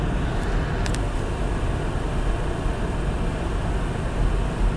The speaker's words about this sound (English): And we're in the other car, so it's going to be a bit noisy. I'm going to shut some stuff off. There we go.